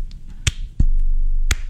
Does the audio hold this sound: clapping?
yes